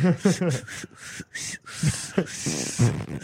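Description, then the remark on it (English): A voice imitates an 'anus whistle', a whistling noise like air escaping: a series of short breathy hisses and thin squeaky tones in quick succession, fairly loud, mixed with voiced sputters, done as an addition to a song. “It sounds more like air escaping than air being forced out.”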